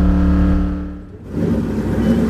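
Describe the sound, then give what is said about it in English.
A loud stock car race engine revs hard and accelerates off pit road onto a track in the Pocono Mountains, its droning tone dipping briefly mid-way as if shifting gear, then surging back into a rough roar. No one speaks. “Then finally, it was my turn to hit the track, and off pit road I went, reaching speeds I've never hit before in my own car, and doubt I ever will.”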